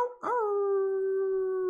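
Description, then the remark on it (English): A wolf howl rises quickly and then holds one long, steady, tonal note for well over a second. It is loud, with no other sounds around it. “Let me hear your wolf howls.”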